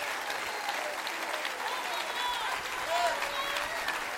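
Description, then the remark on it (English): A church audience on their feet claps their hands in a steady, dense wash of applause that holds at an even loudness throughout, with a faint murmur of voices and a few raised calls mixed in. “You want to get on your feet and clap your hands?”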